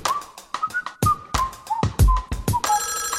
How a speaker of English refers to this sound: Video call from Farky.